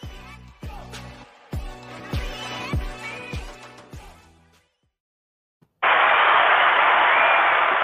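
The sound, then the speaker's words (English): A short musical jingle with punchy beats ends, a brief silence follows, then a loud, dense round of applause bursts in and continues steadily to the end. “We got a round of applause.”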